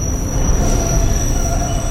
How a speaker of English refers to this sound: I love New York, but standing on the one train platform, the train rolls in and you really feel like you're being stabbed in the ear.